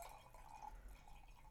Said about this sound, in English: I see you pouring more wine into my glass than yours.